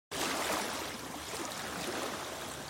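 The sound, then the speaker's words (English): A steady, soft wash of ocean waves on a beach, a continuous hiss of moving water at moderate volume with no voices, starting abruptly and holding evenly throughout. “Feel the soft, warm sand beneath you and listen to the gentle rhythm of the waves.”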